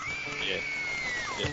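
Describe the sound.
A long, high-pitched scream of excitement outside the Skull Cave holds steady for over a second at fairly loud volume, with a busy, noisy background of voices and commotion beneath it.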